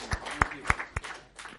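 A handful of sharp, scattered hand claps from the audience at a City Bible Forum talk ring out at uneven intervals, thin and sparse rather than a full round of audience applause.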